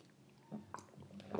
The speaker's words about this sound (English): I'm just going to take a sip.